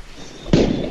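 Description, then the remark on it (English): After a quiet half second, a firework set off inside a hotel room goes off with a sudden loud bang, followed by a sustained crackling, hissing burst that fills the rest of the moment. “It is my God-given right to shoot off fireworks in my room.”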